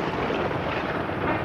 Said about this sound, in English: And there's the lightning again.